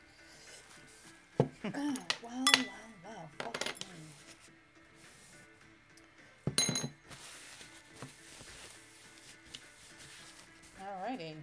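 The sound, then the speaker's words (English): Drink being poured straight from one new glass into another, with sharp glassy clinks and knocks scattered through, and a man speaking briefly amid the clatter. “Hopefully there's no glass in there because I'm just pouring it straight out of one into another.”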